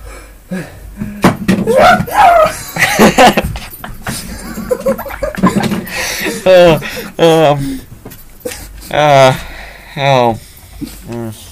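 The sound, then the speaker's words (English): A voice imitates a rooster crowing to wake up the entire neighborhood, in a string of strained, pitch-gliding calls that rise and fall, preceded by rough, gargly vocal noises and scuffling sounds. “It goes like, ha-ka-doo-doo-doo. That's not a burp or a cough. That's a rooster waking up the entire neighborhood”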